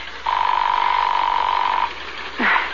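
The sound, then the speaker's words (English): A telephone call placed from New York to a home rings with a single long, steady mid-pitched electronic tone lasting over a second, followed by a pause and a short swooping chirp at the end. No one speaks. “It's ringing.”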